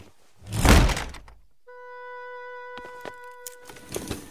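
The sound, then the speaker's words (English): A door slams shut once with a loud, heavy thud, followed by a steady high humming tone and a few faint clicks and knocks. “That moment of like, he slams the door, then he opens it back up, and he's like, it was nice.”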